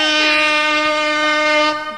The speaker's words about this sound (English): Hit him with the air horns, goddamn it.